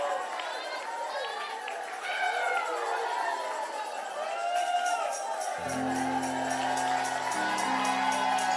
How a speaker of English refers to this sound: Marching and shouting. Come on. Come on. I can't get the Holy Ghost. Just start marching and shouting. I can't get my answer. Just start marching and shouting.